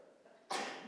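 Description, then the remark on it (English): After a short, quiet lull, one sudden sneeze bursts out: a loud, breathy, hissy blast that hits all at once and stays strong until the end. “Bless you,”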